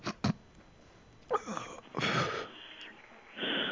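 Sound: coughing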